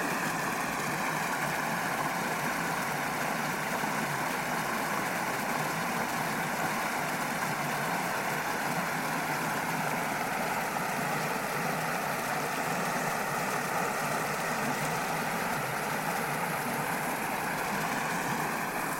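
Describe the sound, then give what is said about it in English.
A steady, unbroken rush of water pours through a canal lock at night, flowing back into the canal, a dense even roar with a faint low hum that holds the same loudness throughout, with no voices. “I'll let you just listen and enjoy the sound of water from the canal and a lock at night.”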